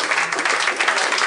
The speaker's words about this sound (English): I'd like to make one more addition. I think the audience is a little too assertive with their end of the segment applause. I think you've gotten a little too big for your clapping britches.